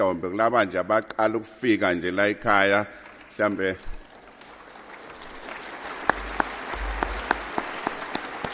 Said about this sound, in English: And those applause were for those that are here for the very first time at KwaSizabantu.